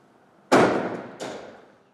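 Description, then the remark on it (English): Two heavy stones drop onto a hard platform one after the other, each landing with a loud, sharp thud and a short ringing decay, with no voices. “And you start hearing these thuds in the dirt. It's a little louder because I'm on a platform, but...”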